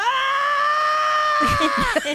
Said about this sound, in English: That's Link yelling in Zelda.